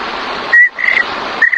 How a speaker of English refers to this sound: The crickets, you know.